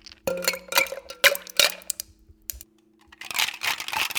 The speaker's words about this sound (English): And then we're gonna add some ice and shake that up.